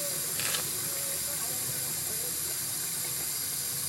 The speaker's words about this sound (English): Anyway, okay, so now I'm going to fill this sink up with nice hot fresh water. No soap, no nothing, just water. I'm going to fill it up right now.